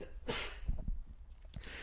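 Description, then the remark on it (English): A sharp sneeze bursts out, followed a moment later by a second shorter sneeze, with breathy noise in between and no talking. “I'm allergic to porgs. I'm sorry. Yeah, sneezing.”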